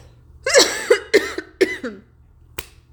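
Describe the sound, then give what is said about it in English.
A person coughs in a harsh fit of several rapid coughs, then a single short cough after a brief pause, with a faint low hum underneath. “Y'all, I see my inner relentless wanted to talk and I'm coughing all over the place.”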